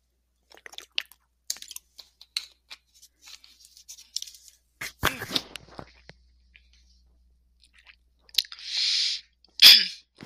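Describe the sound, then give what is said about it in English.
Someone drinks water: scattered wet mouth clicks and swallows, a sharp rustling burst midway, then a breathy exhale and a final gulp. No one speaks. “Sorry, I had to drink some water there.”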